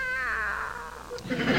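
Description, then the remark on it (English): A cat named Cat Cat lets out one long, drawn-out meow that wavers and slides down in pitch, loud, breaking into a rough, scratchy rasp at the end. “And there's Cat Cat. I shan't see her again.”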